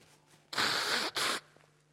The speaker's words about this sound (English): Please forgive me for repeatedly needing to blow my nose, but that's where I'm at. A man cold that only some of you could appreciate.